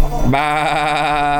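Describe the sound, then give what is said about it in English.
A person mimics a sheep with a single loud, sustained bleat, a wavering nasal "baa" that rises sharply and holds steady with a slight tremble. “Bah. Oh, I love being a sheep of the great shepherd.”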